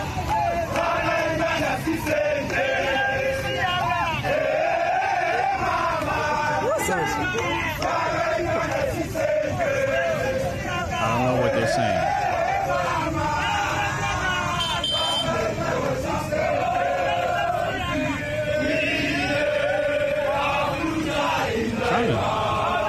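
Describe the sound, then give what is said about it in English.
A large crowd of students in Uganda shouts and chants together in a steady, loud roar that never lets up, with overlapping voices rising and falling and occasional sharper cries breaking through. “Looks like some a large crowd of students.”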